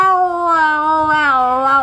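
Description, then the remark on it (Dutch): A cat lets out one long, drawn-out, loud meow, its tone sliding slowly downward over nearly two seconds with no other sounds around it. “De poes komt er nu aan. De andere poes komt er inmiddels ook aan.”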